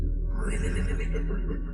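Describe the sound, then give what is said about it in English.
A big, strong-willed horse near a stable in the rain neighs loudly, one long whinny with a breathy, shuddering edge that fills the moment and fades slightly at the end. “We don't want it to feel outnumbered or a threat, because these horses don't run.”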